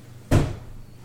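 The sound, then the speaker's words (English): A cat attacks a door: one sudden, fairly loud thump with a short rumbling decay, then quiet. No voices. “A cat was trying to attack our door, and I killed a spider.”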